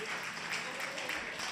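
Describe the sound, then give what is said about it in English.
A church audience claps steadily as a clap offering to the Lord, a dense wash of many hands with no clear individual beats, holding an even, moderate loudness throughout. “Come on, church, give the Lord a great clap offering.”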